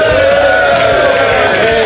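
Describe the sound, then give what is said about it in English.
A live audience at PHP Tech 2012 in Chicago cheers in a loud, steady roar of many voices, a dense wash of noise that holds throughout the short stretch with no single voice standing out. “And I'll have a drink in response to that cheer.”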